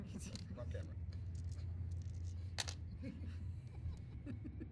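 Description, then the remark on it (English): Scattered sharp clicks and clatters of physical dice tumbling across a tabletop during a tabletop role-playing game come in short bursts over a steady low background hum, with indistinct voices murmuring. “D&D Beyond's lagging on me, so I'll just do physical dice.”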